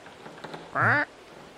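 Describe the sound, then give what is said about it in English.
A parrot lets out one short, loud, harsh squawk, sudden, after a moment of faint background rustle with no one talking, as part of a recorded creaking pirate ship soundscape. “Oh, parrot. Parrot.”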